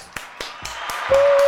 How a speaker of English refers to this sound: But before we go, let's just give God a hand clap of praise for the launch of Exousia Power.